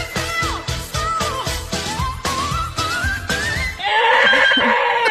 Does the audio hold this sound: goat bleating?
yes